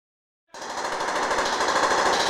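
After a moment of silence, rapid gunfire breaks out: a dense, steady stream of sharp shots fired in quick succession by a man with a gun in a school hallway at Pueblo East High School, loud and continuing without pause.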